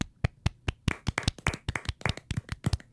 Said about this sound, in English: So yeah, can we get a golf clap for all our dedicated Slack fans from Q&A too?